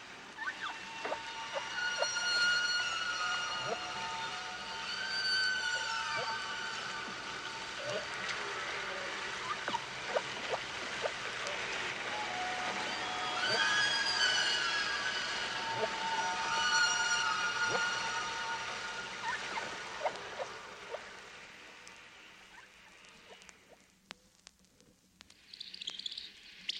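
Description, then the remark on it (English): Humpback whale song: a continuous string of swooping, whistling tones and chirps over a steady watery hiss, moderately loud, with no pauses and no talking. “Unlike bird songs, humpback songs are very long, 6 to 30 minutes, and are strung together without pauses between them.”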